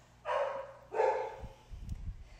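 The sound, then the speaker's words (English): A dog barks excitedly twice in quick succession, sharp, followed by some low thumping and rustling noises with no one talking. “My dog is my best friend and he's going bonkers right now.”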